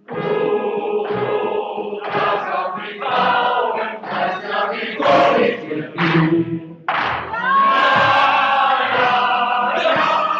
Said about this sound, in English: We're hearing the German singing.